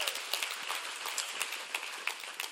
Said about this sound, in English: A little golf clap for Jesus.